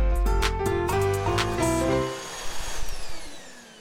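A vacuum cleaner motor whirs loudly with a shifting, harmonic whine, then powers down into a rough, fading rumble over about four seconds, with no one speaking.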